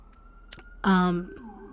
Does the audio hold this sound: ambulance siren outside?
yes